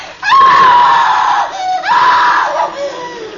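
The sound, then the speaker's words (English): A woman lets out two loud, piercing screams: a long sustained shriek, then a brief break before a second scream that trails off and falls in pitch. “I knew it was my sister who had screamed.”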